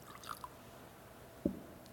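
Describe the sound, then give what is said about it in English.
Faint drips of water fall into a chalice of wine: a couple of light plinks, then a small splash a moment later, quiet, with no voices. “Through the mystery of this water and wine,”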